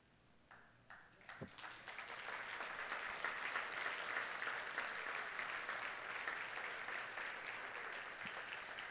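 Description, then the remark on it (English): A large crowd bursts into sustained applause, swelling within the first couple of seconds and holding steady and loud, a dense wash of many hands clapping. “I just want to applaud you”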